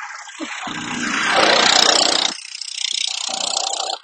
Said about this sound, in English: oh boy, somebody's coming by on a tractor.